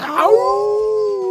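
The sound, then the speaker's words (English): A person with a rough voice imitates a wolf howl: a single sustained, wavering tone that starts with a rough, breathy rise and then holds steady, fairly loud, with no other sounds. “I can't howl.”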